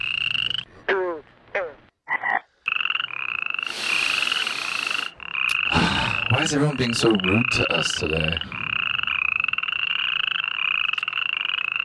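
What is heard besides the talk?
frogs croaking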